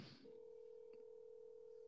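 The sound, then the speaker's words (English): A brief rustle, then a single steady electronic phone tone from a keypad as someone calls another person, holding unbroken to the end, clean, with no one talking. “Oh, I'll just call him.”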